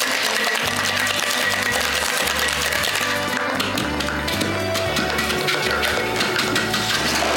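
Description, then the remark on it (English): A cocktail shaker holding a cocktail of grapefruit syrup and fresh lime juice rattles in quick, steady bursts of ice against metal, fairly loud over a backing music track, with no one speaking. “Quick shake.”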